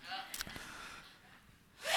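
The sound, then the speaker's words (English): A quick gasping intake of breath and a short, sharp sneeze burst, followed by a rising breathy hiss that grows loud at the end. “God bless you.”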